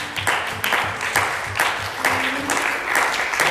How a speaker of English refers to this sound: Give the Lord a hand clap of praise here this morning.